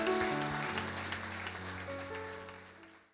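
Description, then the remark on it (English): A church audience at C3 Hobart claps steadily over soft sustained keyboard chords, the dense patter gradually thinning and fading toward the end. “Why don't we give these guys a round of applause?”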